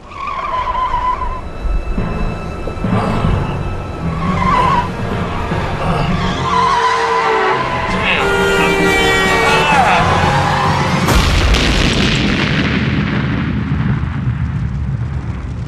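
Tires squeal in a long, rising screech as a car skids, building into a loud, chaotic crash with crunching impact and roaring debris noise.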